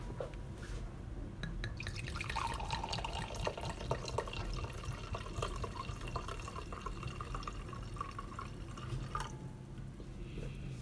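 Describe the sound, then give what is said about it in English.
Wine from a screw-top bottle pours steadily into a glass, a continuous splashing trickle whose pitch rises as the glass fills, then briefly tapers off near the end. No one speaks. “So I guess I shall pour it out.”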